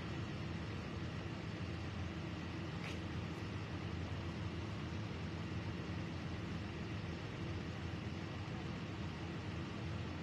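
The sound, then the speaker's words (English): A steady wash of street traffic, cars rolling by on Park Avenue in Cranston in a continuous low rumble at an even loudness, with no single vehicle standing out and no one talking. “Come on, start to see those cars going by.”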